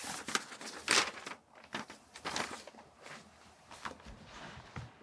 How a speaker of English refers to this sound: I love how I hear these sounds so differently when I have headphones on. This is paper just sliding across my page.